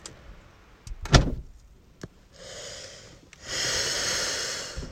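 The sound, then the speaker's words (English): A car door, blown closed by the wind on a very windy day, slams shut with one loud thud, followed by a few lighter knocks and then bursts of gusty wind roaring across the microphone. “Sorry, it's super windy and my car door just blew closed.”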